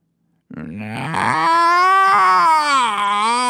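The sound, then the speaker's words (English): The cat Slice screams in an eerie, almost human-sounding yowl: a few broken rising cries, then a loud, sustained, wavering wail that holds for several seconds with no talking. “Slice screams, in that eerie way possessed of cats, which sounds almost like a human voice.”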